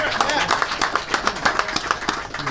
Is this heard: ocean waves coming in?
no